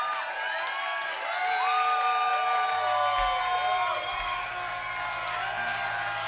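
A concert crowd at a live show in Nashville, Tennessee, broadcast on Lightning 100 radio, cheers and applauds steadily, with scattered high whoops and shouted voices rising above the clapping; a low, steady droning tone comes in about halfway through.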